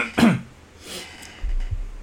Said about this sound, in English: I'm gonna sneeze. Hang on.